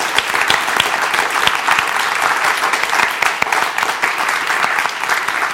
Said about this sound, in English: Can everyone give the ladies a round of applause?